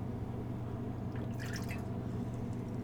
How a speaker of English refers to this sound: Let's rinse out our cups a little bit before we pour another one.